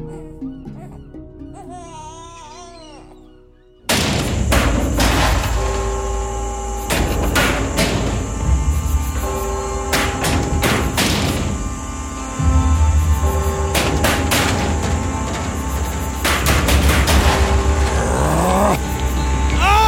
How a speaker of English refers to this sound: is a knocking indeed. If a man were a porter of Hell Gate, he should have plenty of key turning to do here. Knock, knock, knock.